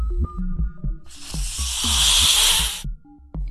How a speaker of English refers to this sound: I had to find out if all snakes hiss. Turns out most snakes hiss. However, the larger ones, well, most snakes have the ability to hiss, but the larger ones are more likely to hiss. The smaller ones not.